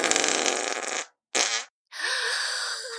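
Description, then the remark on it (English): Three loud farts from Abu Hassan as he rises from his chair, in quick succession: a long rasping blast, a shorter sputtering one after a brief gap, then another drawn-out, buzzy one with a wavering pitch. “But before his bottom had even lifted fully from his chair, Abu Hassan let fly a great and terrible and extremely noisy fart.”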